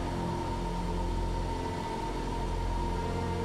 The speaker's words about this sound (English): And a flame jet of burning oil begins to fill the room. Oh. It is crackling with intensity. The fire is hot, and the fumes are stifling.